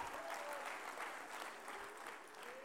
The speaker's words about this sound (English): Oh, come on, somebody clap your hands unto the Lord and shout. Come on, somebody shout unto God.